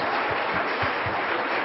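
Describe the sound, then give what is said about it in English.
An audience claps steadily and densely after a children's Christmas cantata, a sustained wash of applause with no voices standing out. “Give them another round of applause, please.”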